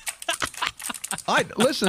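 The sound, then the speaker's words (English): Keyboard keys click and rattle in quick irregular bursts as a soft cleaning gel is pressed and squished into a computer keyboard, pulling the dirt out, with voices murmuring over the second half. “Somebody's now mashing it into the keyboard.”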